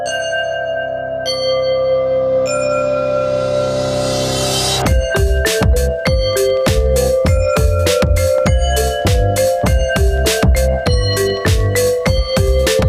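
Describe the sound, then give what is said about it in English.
A synthesized alarm tone from the Alarm Pack of alarm tones swells up in rising layered notes, then breaks into a loud, fast, repeating pulsing beep pattern with a deep bass thump, playing on its own with no voices. “it features 25 special alarm tones for only $6.49”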